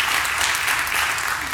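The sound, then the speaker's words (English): Dense, sustained applause from a large church audience, many hands clapping at once for Jesus in a steady wash of sound with no distinct individual claps standing out. “Church, everyone, let's give Jesus a bigger hand clap than that, amen.”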